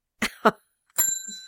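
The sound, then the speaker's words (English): Two short breathy bursts, then a single bright ding of a small bell, clear, its metallic tone ringing on and slowly fading; the bell is rung as a sound effect to signal blushing. “That's what the bell's there for, I know, so they know.”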